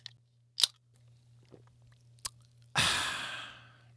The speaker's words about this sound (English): Excuse me for a moment while I take a sip of this fine Mountain Dew.